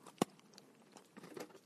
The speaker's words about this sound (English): Sorry about the cookie noises. They're really crunchy and not particularly flavorful at this point, but we'll see what happens.